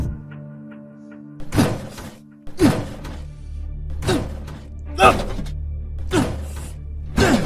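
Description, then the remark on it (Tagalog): A bathroom door is battered open with about six heavy, loud blows at uneven intervals, each a booming thud with a splintering rattle, while a voice briefly cries out between the strikes. “Isa, sisirain ko tong pinto.”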